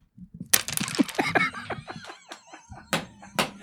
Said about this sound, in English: I'm making a big mess. You are. You have at least 7 die have fallen off the table.